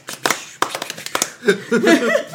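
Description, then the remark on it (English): A brief burst of hand clapping, sharp irregular claps over about a second and a half, giving way to voiced laughter or vocal sounds at the end. “Round of applause.”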